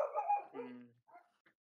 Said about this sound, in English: Yeah, the dogs have something to say about that.